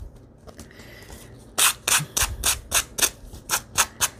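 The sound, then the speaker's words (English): Hand sanding on paper, a steady run of about nine brisk back-and-forth scratchy strokes, fairly loud, after a quieter stretch of soft rubbing and rustling. “We're sanding.”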